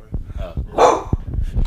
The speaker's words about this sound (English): He's looking at himself in the mirror. Yo, you're so funny. Yo, he's literally looking at himself. You're scaring yourself right now? He's literally barking at him. It's you, bro. Hey. You're barking. Actually, he's barking at you, technically.